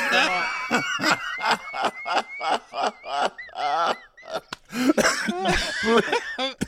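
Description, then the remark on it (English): A person laughs hard and breaks into a fit of repeated, harsh coughs, loud, with wheezy, honking gasps between bursts over several seconds. “Please, you know that I get when I start laughing, I get these coughs.”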